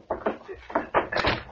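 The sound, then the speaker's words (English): A door swings shut with a series of solid wooden knocks and clunks, followed by the rattle and click of a lock being fastened, after an unconscious man is dragged out of the doorway. “Quick, drag him out of the doorway and then close and lock the door.”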